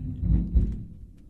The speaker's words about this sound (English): Is that thunder? It's a big old thunder. That's, yeah. Yeah. Lordy, I almost ran in my bed. I almost went and got under the covers. Yeah, that's what it is. I thought we were under attack.